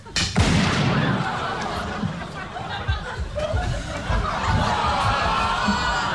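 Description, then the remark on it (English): A single loud, sharp gunshot cracks right at the start, followed by several seconds of lively crowd noise and laughter. “How loud was that gunshot?”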